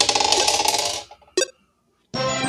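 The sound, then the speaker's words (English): 100-sided dice clatter and rattle across a hard surface for about a second, then a brief sharp click, a pause of silence, and another dense burst of rattling; the roll comes out at about 39. “Find my 100-sided dice. I got them.”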